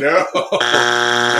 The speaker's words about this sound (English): buzzer. Buzzer.